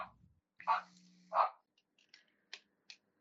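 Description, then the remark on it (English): A male dog barking at nothing in particular lets out two sharp barks about a second apart, followed by a few quieter, clipped yaps, all fairly faint and with no talking over them. “Like shoot, what is he barking at? Legit nothing. Like he's trying to get in on the show.”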